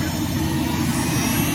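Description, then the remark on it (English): A New Jersey State Police helicopter taking off at a youth leadership camp roars with a loud, steady drone of engine and rotor, a dense low rumble that holds constant throughout, with no voices. “We're going to watch the helicopter take off in a little while.”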